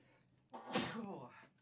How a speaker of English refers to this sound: …'s gonna have a sneezing fit.